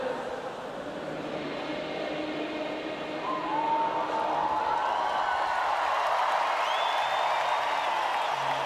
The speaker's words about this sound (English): And you could hear there as well the crowd all cheering and clapping along as well, but like, yeah, boy, we did it. And then you got like obviously the crowd obviously at the end with the ding going as well.